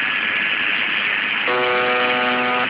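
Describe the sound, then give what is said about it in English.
Steady shortwave radio hiss, then a harsh, droning buzz from the UVB-76 station, the buzzing it transmits 24 hours a day, cuts in about halfway through and holds at an even, loud, flat pitch for just over a second. “This is the buzzing that happens 24 hours a day.”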